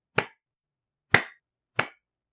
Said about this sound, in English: Personally, I recommend the pity clap. It's for those times when you do something dumb, but you still think it was kind of cool.